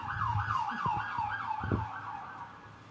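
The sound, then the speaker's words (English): A wailing emergency siren rises and falls in quick, repeating sweeps over low traffic rumble with a couple of dull thumps; no one speaks. “There's your second siren for there it is.”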